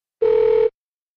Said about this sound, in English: Oh, what is that noise? Who's calling? Someone's phone is ringing.